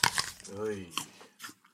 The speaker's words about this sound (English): So this person is going to hate, for example, because this person with misophonia, a hatred of sound, especially chewy lip smacks, they're going to hate this.